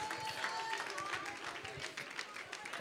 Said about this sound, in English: That's all you people do is clap.